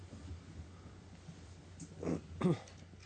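A dog lets out two short, breathy pants in quick succession against a steady low background hum, with quiet stillness before and after.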